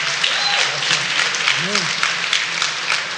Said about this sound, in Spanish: Y todas las madres que están aquí, dale un aplauso a todos los padres que están viniendo al frente.